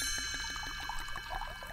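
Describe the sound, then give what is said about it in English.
Wine glugs steadily from a bottle into a glass as the wines of the week are poured, a rapid series of gurgling pulses with faint tinkling, fairly quiet, with no talking. “So I've poured the wines of the week.”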